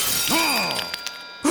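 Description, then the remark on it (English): A crown shatters in a loud, bright burst of breaking, with ringing tones that bend and fade, a couple of small clinks trailing off, and a short final crack at the end. “Did you shatter your own crown?”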